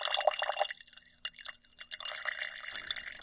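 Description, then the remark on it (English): Pigment-laden fluid is poured off into a separate glass jar to save it while making pigment, a thin splashing trickle with drips that comes and goes in short bursts over a few seconds. Nobody speaks. “All the fluid that's still kind of floating around with pigment, I'm going to pour that into a different jar and save it.”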